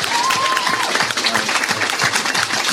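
A round of applause fills the whole stretch: dense, steady clapping from a small group, with a brief whistle-like tone early on and faint voices mixed into the noise.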